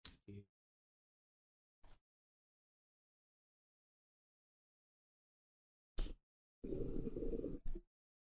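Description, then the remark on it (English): A bong hit of Pine Park flower: a sustained, bubbling, gurgling inhale lasting about a second, after a few brief clicks and rustles separated by long silent gaps. “I'm ripping a bong.”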